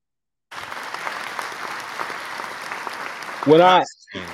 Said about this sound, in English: Give him a hand clap, man.